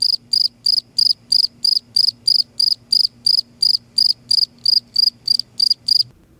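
crickets chirping

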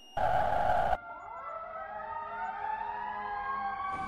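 fire engine siren

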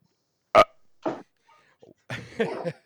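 burp

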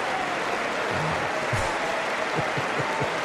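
applause

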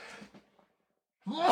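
sneeze

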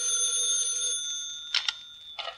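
telephone ringing

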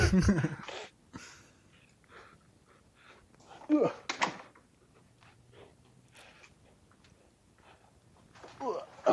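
door being closed

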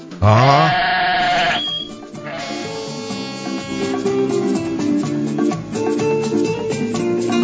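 sheep bleating

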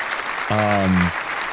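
applause sound effect button

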